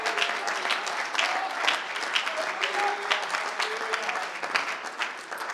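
audience clapping hands

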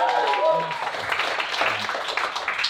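audience clapping and applause

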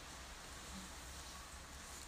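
rain falling

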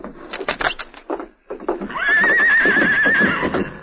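horse neighing

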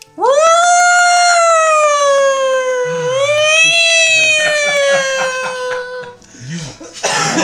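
sirens going off

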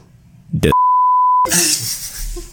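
censor beep

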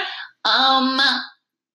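burp

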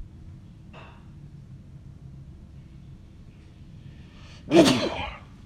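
hard sneeze

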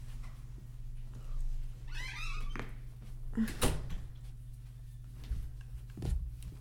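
door being shut

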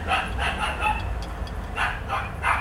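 dog barking

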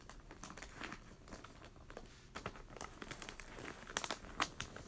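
wrapping paper crinkling

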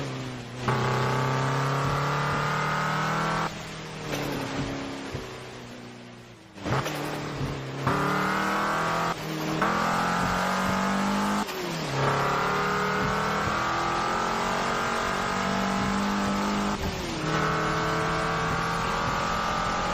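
racing car engine revving

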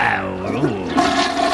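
toilet flush sound effect

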